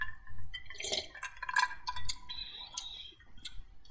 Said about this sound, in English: So let's take a sip before we go on, because I am very curious. Me too. Okay. Cheers.